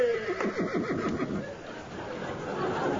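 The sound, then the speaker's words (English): A horse neighs and whinnies, a quivering, descending call that wavers rapidly for about a second before trailing off into a faint background murmur. “The horse got thrown in for nothing.”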